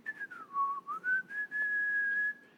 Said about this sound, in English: He rebuked, took authority, probably did all of his stuff, and then he just went about his chores whistling.